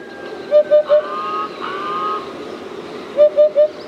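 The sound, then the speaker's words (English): A hoopoe gives soft, hollow hoots in two quick triplets, one early and one near the end, over a steady outdoor background with faint calls from other birds in between. “These soft, modest hoots signal a bird so distinctive, so fabled, that it's hard to know where to begin its story.”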